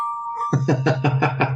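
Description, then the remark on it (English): A phone ringtone on a call to a Google Voice number: a steady high electronic tone, then a quick, even run of six buzzy, pulsing beats over a low hum. It plays alone, with no talking. “I want to hear your phone ring, Jim.”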